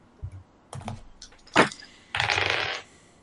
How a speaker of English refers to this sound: roll me some percentile dice. Roll high.